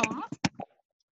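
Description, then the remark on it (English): A brief voice is followed by three or four muffled thumps and rustles, the sound of a wireless AirPod earbud knocking loose and falling out while the wearer grabs a Black Cherry White Claw, then quiet. “Sorry, my AirPod fell out when I was grabbing my Black Cherry White Claw.”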